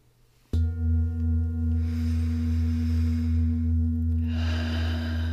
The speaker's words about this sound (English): As I tap the old Tibetan bowl, I ask you to breathe in deeply.